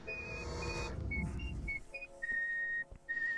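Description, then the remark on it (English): The cartoon character Banana Joe whistles a short tune of clear, shifting notes, held and stepped in pitch, with a low rumble underneath at the start that fades as the melody continues. “I'm listening to Banana Joe whistle.”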